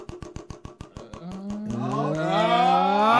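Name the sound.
horse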